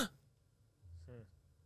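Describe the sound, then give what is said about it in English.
A brief, startled gasp: a quick voiced intake of breath that catches in the throat, fairly quiet, with no talking around it. “That was a legitimate gasp.”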